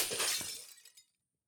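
A Christmas tree smashes onto the ground in one loud crash of bright shattering, like breaking glass ornaments, that trails off within about a second with no voices; the tree turns off as it hits.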